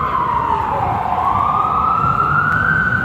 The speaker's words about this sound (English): But nevertheless, well, let me let this siren pass by.